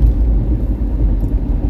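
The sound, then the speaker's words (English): Steady, loud low-frequency road rumble of highway traffic in the Asheville and Hendersonville area on a hot, sunny day, a continuous drone of car and tire noise with no clear individual passes and no voices. “On the highway, of course, it's going to be just a little hotter because you got all these vehicles on here and the sun is reflecting the heat of all this metal and fiberglass and windows and all this fine cars.”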